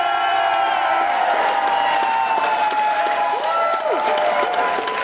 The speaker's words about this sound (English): And we need three winners. Here we go. Give this one a round of applause. Yeah!